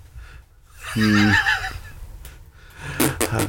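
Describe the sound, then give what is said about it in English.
A harnessed horse pulling a cart up a hill whinnies loudly, a shrill quavering neigh lasting about a second, followed by a couple of short snorting breaths. “As the harness is, reassembled, you can feel the, balance return to the horse and the cart as the horse starts to pull up the hill.”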